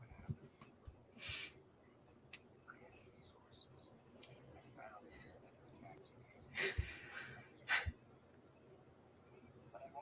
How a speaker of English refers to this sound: I'm sorry to anyone listening to the audio if you can hear me heavily breathing. I'm drunk. That's me going up the stairs all the time.